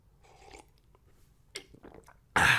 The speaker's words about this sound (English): Quick sip of water, boss. Don't mind me, boss.